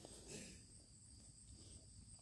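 Cicadas drone in a steady, high-pitched buzz that holds unbroken throughout, over a soft low outdoor rumble with no voices.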